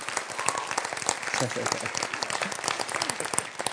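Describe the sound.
A crowd applauds steadily, dense overlapping clapping filling the whole stretch at a fairly loud, even level, with a few voices murmuring underneath.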